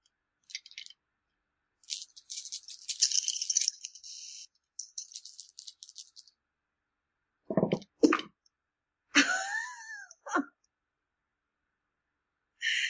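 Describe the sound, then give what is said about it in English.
Dice rattle in quick, crisp bursts for several seconds, as if shaken in a hand or cup, then a few louder clacks and thuds as they are thrown and land for a roll in a game, with no talking. “All right, make a fast roll.”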